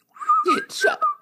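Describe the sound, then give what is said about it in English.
A person whistles a brief, wavering tune of a few sliding notes, fairly loud, with breathy bursts between phrases. “He could kill anyone just by whistling a little tune.”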